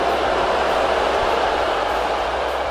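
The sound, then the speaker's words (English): A large crowd boos loudly and without pause, a dense, steady roar of many voices that fills the whole clip with no individual words rising above it, at the 2018 US Open final trophy celebration after Naomi Osaka beat Serena Williams. “Now, that was the crowd booing Osaka when she beat Serena Williams in the finals of the 2018 US Open.”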